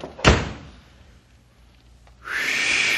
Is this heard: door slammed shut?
yes